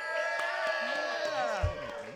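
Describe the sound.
An audience cheers and applauds in a steady, loud wash of many overlapping shouting and whooping voices that keeps going for the whole couple of seconds, with a brief low thump near the end, voting by applause for who explained a word best in a game.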